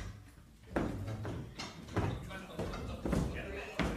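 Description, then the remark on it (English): A cushy chair is shifted and adjusted with a series of irregular clunks and knocks, about half a dozen sharp thuds spread over a few seconds amid soft rustling and shuffling. “Gotta be smarter than the chair.”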